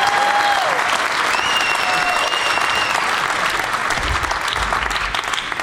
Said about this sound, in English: Bill Cosby is a shithead. It's a room full of white people clapping at black shitheads.